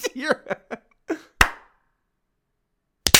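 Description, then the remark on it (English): A single sharp hand clap, made to sync audio at a set clock time, cracks out after a few brief voiced sounds, its ring fading quickly into silence before another abrupt burst arrives at the very end. “Let's clap at 7-12-20.”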